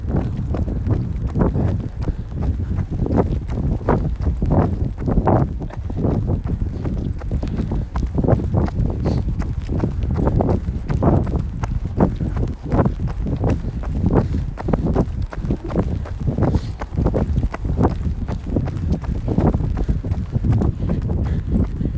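wind blowing outdoors

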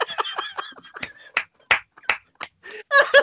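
hands clapping

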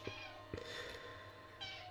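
cat meowing

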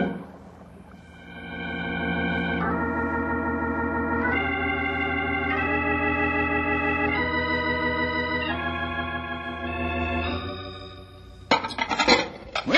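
washing dishes

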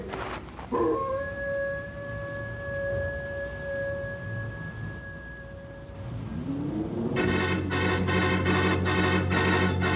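wolves howling

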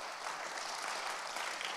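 audience clapping

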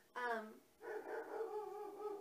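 dog barking

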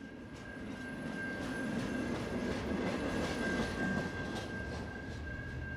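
train passing

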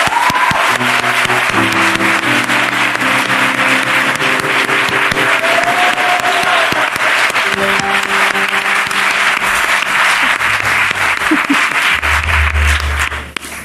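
audience applause

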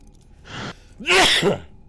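sneeze

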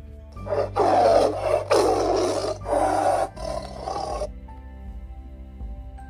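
tiger roaring

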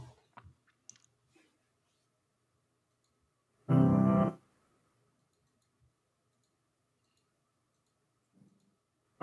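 computer mouse clicking

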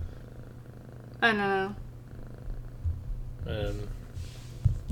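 cat purring

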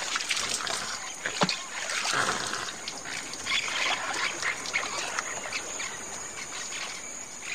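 water trickling

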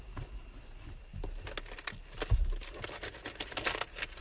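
keys jangling

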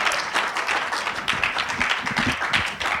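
audience applause

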